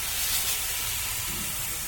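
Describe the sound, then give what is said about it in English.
Water sprays steadily onto a series of sifting screens at an archaeological excavation, washing sand and soil from dirt taken from the pits; a continuous broad hissing wash with a low rumbling undertone, even in loudness throughout and no voices. “A few hundred feet away, dirt taken from the pits is being spread out on a series of screens and sprayed with water to wash away the sand and soil.”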